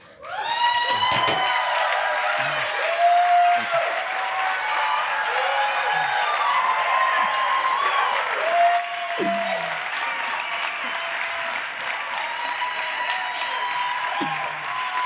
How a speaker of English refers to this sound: So clearly, that round of applause is for you, because what a passage, right?